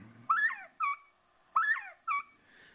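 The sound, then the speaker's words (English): A quail covey call, played from a device held up to a microphone, repeats twice. Each call is a loud, whistled two-part phrase of rising-falling notes followed by a shorter note, clear and with no talking. Quail use the call to bring other birds into their covey. “That's a covey call.”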